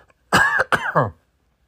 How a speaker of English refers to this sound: Excuse me while I cough.